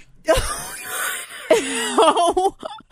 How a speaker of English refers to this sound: Oh my gosh. I just hit my head on the microphone when I sneezed.